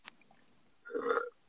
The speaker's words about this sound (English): Excuse me, I burped. I'm sorry. I apologize, people.